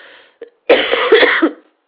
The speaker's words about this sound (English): And I do apologize for this cough. I really don't even know what's going on with it.